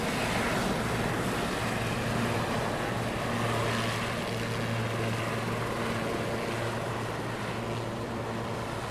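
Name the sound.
helicopter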